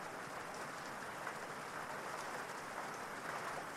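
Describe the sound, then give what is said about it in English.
Steady rain falls in a constant, even hiss, with soft patters of drops spread across the surface. It stays continuous throughout, with no voices. “You step down off the porch and into the rain.”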